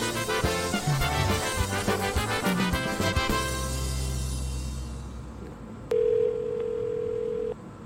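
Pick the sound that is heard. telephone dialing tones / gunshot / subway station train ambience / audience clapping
telephone dialing tones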